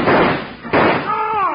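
A rider opens fire: two loud, sharp gunshots ring out about three quarters of a second apart, each with a noisy, echoing tail, followed by a brief wavering vocal sound.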